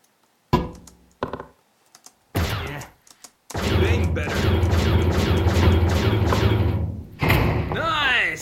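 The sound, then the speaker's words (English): A couple of heavy thuds as a door is punched, then a loud, sustained crash and rumble as it gives way and falls, with a voice sounding at the end. “Now for the door. Give it all you got.”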